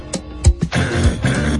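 A man clears his throat: a few short, rough bursts followed by a longer, gravelly rasp that rumbles on to the end, with no speech.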